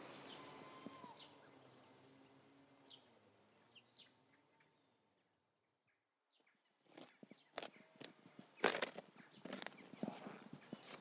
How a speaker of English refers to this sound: We come round the south side of the church with the primary school opposite, and the lich gate, and there's birds singing as ever in a churchyard.